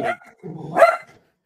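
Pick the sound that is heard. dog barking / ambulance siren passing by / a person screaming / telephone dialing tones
dog barking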